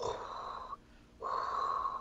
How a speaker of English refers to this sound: And then I'm like, okay, I'm going to do some breathing.